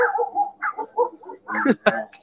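A small dog yaps a few times in quick, uneven bursts, moderately loud, with a couple of sharp high barks near the end.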